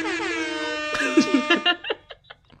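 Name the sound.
air horn sound effect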